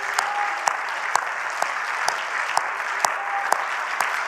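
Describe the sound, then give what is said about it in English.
A church audience stands and claps their hands for Jesus in a steady rhythm, sharp in-unison claps about twice a second standing out over a continuous wash of crowd applause. “Let's all stand and clap our hands for what Jesus did, shall we?”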